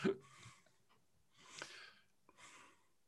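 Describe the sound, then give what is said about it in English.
Breathy human gasps, a sharp intake at the start followed by two longer, airy breaths, fairly close and moderately loud with quiet gaps between them; no speech. “There is a gasp, I guess.”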